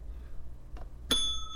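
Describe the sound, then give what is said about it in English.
A soft knock, then a single bright bell ding rings out near the end, its clear metallic tone lingering and slowly fading. The bell is moderately loud against a quiet, low background hum. “Where's my bell? That's the episode title.”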